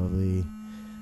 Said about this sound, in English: Oh my god, my little buzzer for pizza. It's buzzing.